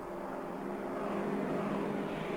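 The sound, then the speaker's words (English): A steady, droning engine roar of planes coming to take out a bridge, like aircraft passing overhead, loud and continuous throughout with a low rumbling hum and no voices. “The planes are coming, and they're going to take out the bridge.”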